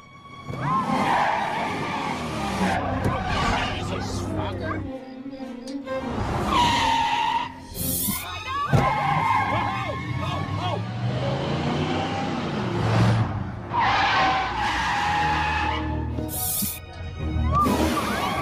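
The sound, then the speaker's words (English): A car chase with tires skidding and squealing in repeated long bursts over roaring engines, loud, with voices faintly mixed into the chaotic traffic noise. “This is how it would go if you had a car chase in Manhattan.”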